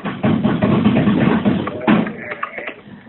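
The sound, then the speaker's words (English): A dense, clattering rattle of knocking bones, ten skeletons rattling, rapid and continuous for about three seconds, fairly loud, loosening into sparser clicks near the end. “Ten skeletons rattling.”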